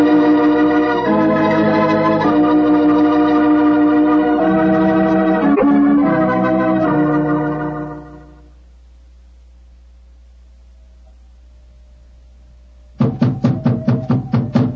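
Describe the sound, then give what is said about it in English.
Music plays and fades into silence. A burst of rapid, loud knocks on the wooden door of an elephant house follows, a quick run of about eight sharp raps. “We must have been knocking here for 5 or 6 minutes.”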